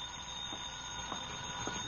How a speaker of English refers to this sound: Then the phone rang.